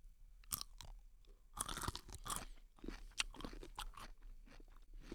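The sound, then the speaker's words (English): Someone bites into a sweet dill pickle, a medium-sized pickle like a big gherkin, with a sharp crunch, then chews it in a run of moist, crunchy bites with no one speaking. “So let's take a bite.”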